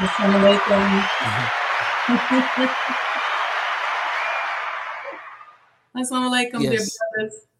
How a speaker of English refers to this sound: Y'all give her a round of applause as well.